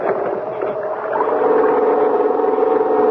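A small gasoline engine, as from a rope-started generator, drones with a steady mid-pitched hum, growing a little louder and rougher after the first second and then running on evenly.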